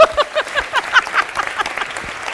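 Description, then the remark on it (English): A short burst of audience applause for a woman, with dense, crackly clapping from several people running steadily for a couple of seconds at moderate loudness. “So I was not planning this, but I super want to give you like a round of applause. Can we just applaud her?”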